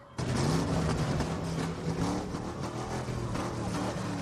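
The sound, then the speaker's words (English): A car engine revs aggressively in a loud, continuous roar, its low growling pitch rising and falling for about four seconds, with no one talking. “I love how he's revving the engine like it's like a fucking Mustang.”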